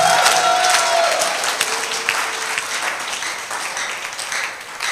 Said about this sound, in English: Can you give the Lord a better clap? Can you give the Lord a better clap?